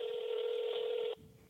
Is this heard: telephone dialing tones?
yes